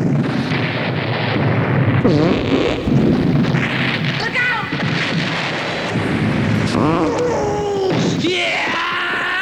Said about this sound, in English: Just explosions.